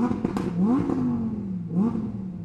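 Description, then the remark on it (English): Shadow's car engine revs and accelerates as he drives faster towards the red dot on the map screen, its pitch sweeping upward in two surges over a steady throaty rumble, loud with no voices. “Shadow looked at the map screen and drove faster towards the red dot that was where the last Ultra Chaos Emerald was.”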